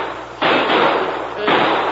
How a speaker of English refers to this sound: Those were shots, Spike. Look, someone's been shot in the balcony.